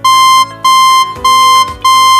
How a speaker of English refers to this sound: A beeping noise sounded over the ship's speakers.